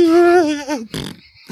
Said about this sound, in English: There's the fart again.